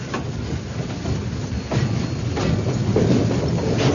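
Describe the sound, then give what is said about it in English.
An old steam train rumbles steadily, with creaking and clanking over a heavy low chugging and hissing steam. The sound is loud and continuous, with no voices. “That old train dragging him on to hell, creaking and clanking and chugging its way through that darkening night.”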